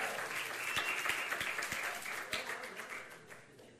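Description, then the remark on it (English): A crowd applauds two audience members called up to help, a dense wash of many hands clapping with a few sharper claps standing out, holding fairly loud before tapering slightly toward the end. “Woo, let's give them a round of applause here.”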